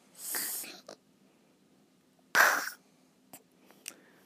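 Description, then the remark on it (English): A voice imitates snoring with two harsh, breathy snorts separated by a pause, the second louder, followed by a few faint clicks and breaths. “It was about snoring. You had a dream about snoring? Yeah, about this.”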